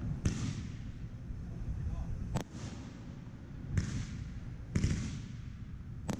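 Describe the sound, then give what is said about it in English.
Firework shells thump and burst in sharp, echoing cracks, five of them at irregular intervals, two of them failing to break symmetrically, over a steady low outdoor rumble with faint voices in the background. “Those two shots in there weren't good. They weren't good? Yeah, they didn't break symmetric.”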